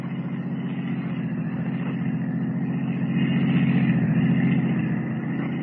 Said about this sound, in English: Rather than risk detection by trailing the girl as Superman, Kent steps into a waiting taxi cab and follows her.